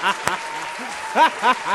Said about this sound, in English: Man, oh man. I got to give you a big round of applause for that.